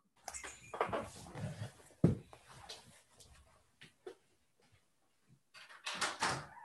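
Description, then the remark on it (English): A front door being answered: soft shuffling and handling noises, a sharp clunk of the latch or door, then scattered quiet knocks and a brief burst of movement at the end. “Can you hold on for just a second? Somebody's at the door.”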